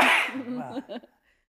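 A single loud sneeze bursts out with a sharp hissing explosion, then trails off into a short voiced tail before falling silent.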